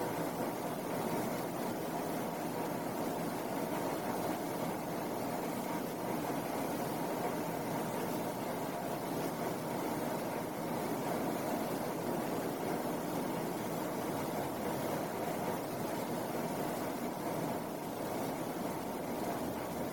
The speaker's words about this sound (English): Now, pay attention simultaneously to the sound of the air conditioning and the sensations in your right hand.